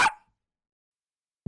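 A small dog lets out one short, sharp, high-pitched bark right at the start, then everything falls silent until a low sound cuts in at the very end.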